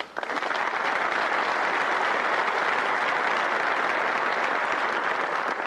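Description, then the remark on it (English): An audience applauds steadily, a dense, even wash of many hands clapping that holds at a constant loudness throughout, with no voices rising above it. “Before you clap”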